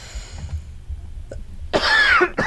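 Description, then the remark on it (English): A loud, harsh cough bursts out after a quiet moment, followed quickly by a second shorter cough, with no talking. “See, your own stupidity made you cough.”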